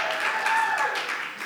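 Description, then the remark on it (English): Audience clapping fills the moment, a dense, steady wash of many hands applauding at once, fairly loud and even throughout, with no voices standing out. “clap it up.”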